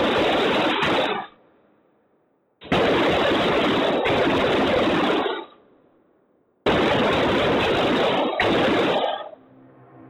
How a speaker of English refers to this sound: Here is the audio from those first few moments. Keep in mind, the audio is edited, so all you can hear is the gunshots.